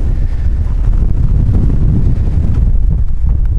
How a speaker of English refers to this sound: Wind is still certainly whipping through, but we're gonna make it. As I neared the summit, the wind intensified and I was pelted by freezing rain blowing at me sideways.